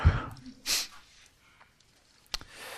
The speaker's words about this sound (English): Let me overcome a sneeze.